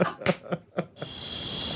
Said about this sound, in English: Well, found the crickets. But they're not comedy crickets, they're just actual outdoor crickets. The crickets, like it's a nice night crickets.